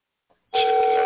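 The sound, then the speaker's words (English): After a brief silence, a steady electronic ringback tone starts and holds, the purring hum of an outgoing phone call ringing on the line, clear and fairly loud with no voices. “Now he need to pick up the phone and say hello.”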